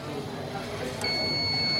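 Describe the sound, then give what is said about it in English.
A blood donation machine gives a steady electronic beep signaling that the donation is over, starting about halfway through and holding as a sustained high tone over a murmur of room noise and faint background voices. “The machine will signal that the donation is over. It'll beep now shortly and it'll clamp off by itself.”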